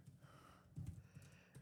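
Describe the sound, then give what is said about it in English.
Soft, irregular clicks and taps of keys being pressed on a computer keyboard, quiet, with a slightly louder burst of keystrokes in the middle and no talking. “I was typing.”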